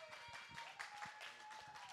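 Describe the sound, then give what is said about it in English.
A church audience applauds steadily to welcome the youth pastor of Eureka Bible Church as he comes up to speak. It is a dense patter of many hands clapping at once, fairly soft and unbroken, with no voices rising above it. “So as he comes up, welcome him with a round of applause.”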